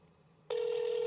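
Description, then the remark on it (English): An international phone ringing tone: after a moment of near silence, a loud, steady electronic beep starts and holds unbroken to the end, with nobody speaking. “That's an abroad phone.”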